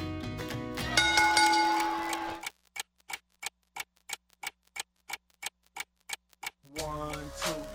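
A clock ticks steadily and crisply, about a dozen evenly spaced ticks standing alone in a gap between bursts of music that fade out before and swell back after.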